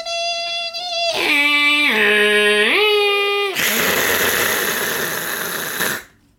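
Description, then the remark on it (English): A person vocally imitates a dial-up modem: a sustained nasal tone, a rising and falling warble, then a loud harsh static-like hiss that cuts off abruptly after about six seconds. “That's my modem set.”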